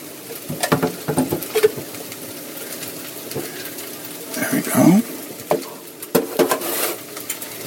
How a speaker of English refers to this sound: And now I'm going to take that can of tomato sauce, which I left over here. I'm going to pour a cup and a half of that into a measuring cup.